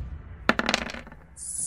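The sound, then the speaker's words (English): Dice clatter across a tabletop in a quick burst of sharp clicks that bounce and settle within half a second, with no one talking, followed by a faint high whine. “17? No, those dice are terrible.”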